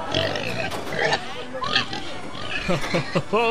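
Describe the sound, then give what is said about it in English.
A person makes loud pig-like snorts and oinks at a carnival, a voice imitating a pig in several rough, grunting bursts, with other voices and a noisy outdoor background around it. “You're a pig!”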